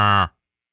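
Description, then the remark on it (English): A person gives a short, low, droning vocal moo in imitation of a cow, loud, ending abruptly and followed by silence. “Like, moo.”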